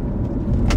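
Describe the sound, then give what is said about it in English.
Steady low rumble of road noise inside a car driving to work, a constant droning hum with a brief brighter rustle near the end; no voices. “So I'm driving to work because I can park.”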